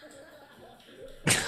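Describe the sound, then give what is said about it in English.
A locked door is jolted once with a sudden, loud bang near the end, breaking a quiet stretch of faint room noise. “Oh, the door was locked.”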